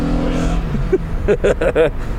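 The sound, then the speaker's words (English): The engine of a vintage SEV6 King Cab two-wheel-drive pickup truck rumbles at a steady idle, then is revved in four quick, loud bursts, each rising and falling in pitch. “I'm just going to shut up now and let you guys enjoy the sounds of the vintage SEV6 King Cab two-wheel drive.”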